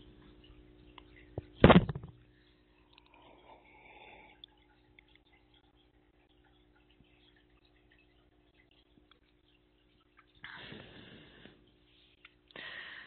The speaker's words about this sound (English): All right. I'm going to take a sip of my water here.